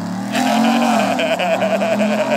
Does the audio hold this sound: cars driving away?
yes